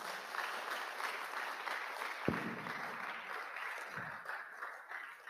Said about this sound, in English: Clap your hands for Jesus.